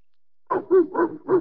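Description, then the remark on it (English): A dog named Fido, called during a political meeting, barks four times in quick, even succession after a moment of silence, the barks fairly loud with a slightly whiny, yelping tone. “Listen to that, dog.”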